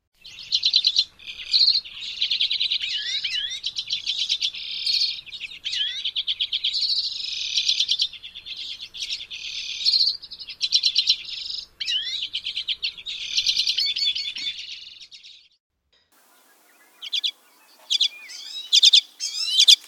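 A large flock of birds calls continuously, a dense overlapping chatter of high chirps and twitters that pauses briefly near the end before resuming in scattered bursts.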